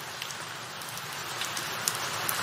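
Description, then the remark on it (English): Steady rain patters on a hard surface, a dense, continuous hiss of countless droplets with occasional louder individual drops, consistent in volume throughout. “Sounds to me like the sound of rain.”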